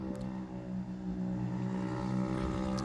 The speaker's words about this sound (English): Is that that was the loudest moped. Is that a Harley moped? Does Harley make mopeds?